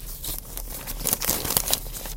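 Paper crinkles in a steady stream of small crackles and rustles, growing a bit busier midway through, with no one speaking.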